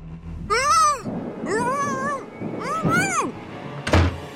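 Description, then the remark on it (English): A stray cat yowls three times in drawn-out, wavering cries that rise and fall, loud, followed by a sharp thud at the end. “Or maybe you're having a tough time deciding what to do with the stray cat that's keeping you up all night.”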